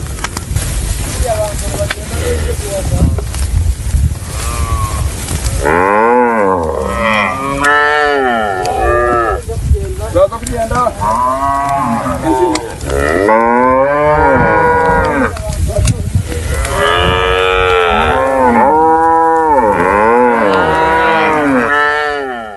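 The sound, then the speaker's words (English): Ankole cattle moo loudly and repeatedly, several long rising-and-falling calls overlapping one another, after a few seconds of low rumbling background noise. “It's cholesterol free, and you just need to see some of these cattle and just fall in love, and which is exactly what I did.”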